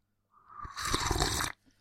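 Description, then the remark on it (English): A loud, wet slurp lasting just over a second, starting with a rising airy pull and swelling into a harsh, hissing suck before cutting off abruptly. No voices accompany it. “Or slurp. I always forget about that, how noisy it is.”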